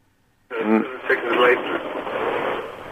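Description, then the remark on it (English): A tinny, narrowband voice comes back over a phone line like a delayed echo about 7 seconds later, starting abruptly after a brief silence and trailing into steady line hiss. “I'm hearing a vague echo 7 seconds later.”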